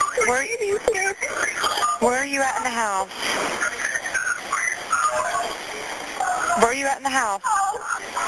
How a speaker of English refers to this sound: He's yelling to turn off the alarm.